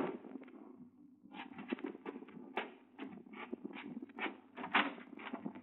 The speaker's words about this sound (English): It was noon when I was awakened by a knock on the door.